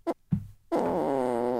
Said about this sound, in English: Get that laughter in there with the fart sounds. Is everybody laughing at home?